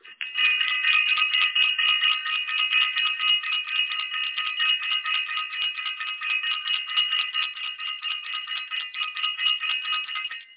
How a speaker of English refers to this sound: I want to ring the bell for self-invested.